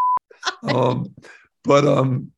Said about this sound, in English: you can say it because they'll just beep you out.